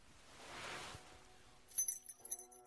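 A soft rustling swell gives way to a short burst of jangling keys held between someone's toes, several quick metallic clinks, then a couple more light jingles before it fades. No one speaks.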